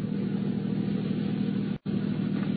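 A taxi engine rumbles steadily as the cab turns to circle back at the next corner, a low continuous drone with slight surges, broken by a split-second dropout near the end before resuming. No voices.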